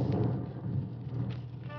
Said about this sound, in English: Beginning to rain.